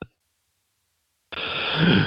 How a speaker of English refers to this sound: God, hold on. I gotta blow my nose now.